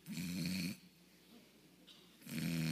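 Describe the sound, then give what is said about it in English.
A person mimics snoring with two loud, drawn-out rasping snores separated by a quiet pause, with no other sounds. “I mean, you have to wonder if he snored, right?”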